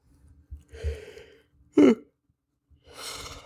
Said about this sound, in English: I'm yawning. I had a long day.